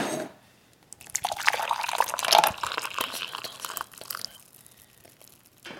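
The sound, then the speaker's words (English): Boiling water pours from a full kettle into a cup up to the 2-cup level, a steady splashing stream for about three seconds, then tapers off into quieter trickles and silence. “Can you put hot water all the way up to there? It's actually boiling water.”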